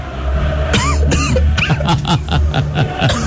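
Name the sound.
man coughing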